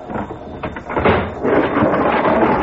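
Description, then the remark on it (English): The heavy door of a freight car on a stopped train is torn open by men, a rough grinding scrape that swells and rumbles continuously for a few seconds, fairly loud, with no voices. “As they break the seal on the freight car, other men tear open the door of the car ahead.”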